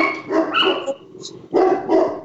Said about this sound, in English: Our dog. It's okay.